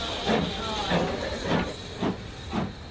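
A steam train, the Watercress Festival shuttle, hisses and chuffs as it pulls away, with five evenly spaced bursts of steam over a steady background hiss, moderately loud.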